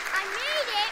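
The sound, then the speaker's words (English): A round of applause: dense, steady clapping fills the whole short moment, with a high voice gliding and whooping over the top. “Okay, can we give him a round of applause?”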